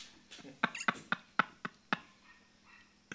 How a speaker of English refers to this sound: Yep. Even this dog is pissed.